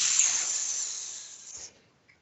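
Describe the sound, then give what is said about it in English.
A voice imitates a snake's hiss: one sustained, breathy hiss held for nearly two seconds, fading out at the end, with no talking over it. “Sometimes you just have to heed the call of the snake.”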